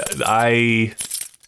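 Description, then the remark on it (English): A drawn-out voiced tone fills the first half, then a short, bright metallic jangle of keys rattles for a moment as they are taken out of a fishbowl, before fading out. “So well, this your is keys the, were in it, so yeah, you were obviously in it. Yeah. I'll just take those out of there, by the way.”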